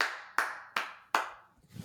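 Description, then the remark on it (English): Four sharp hand claps at a steady pace, each followed by a long, bright echo that rings out and decays before the next one lands; the echo comes from the sound bouncing everywhere while the microphone was down. “I apologize for the echoes on my clap.”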